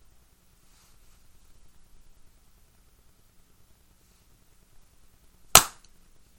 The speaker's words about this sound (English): Let's clap at 55. Okay.